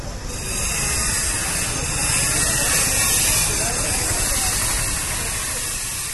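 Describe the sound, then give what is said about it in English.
A noisy street scene with little street cafes where men squat cooking in the street: a dense, steady wash of hissing, sizzling noise fills the whole stretch, with indistinct voices and street bustle mixed underneath at an even, loud level. “Hiving sea of activity here, lots of little cafes which are really just guys squatting in the street cooking up a storm. It's noisy.”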